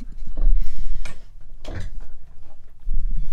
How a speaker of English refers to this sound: Sorry, my chair is like hitting.